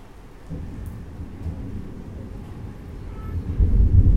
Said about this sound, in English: And the sound of the thunder.